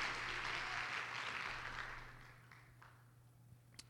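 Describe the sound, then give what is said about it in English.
An audience claps hands to the Lord in a dense, noisy burst of applause that gradually dies away as they are seated, leaving a few scattered final claps over a low steady hum. “Clap your hands again and get to the Lord as you may be seated.”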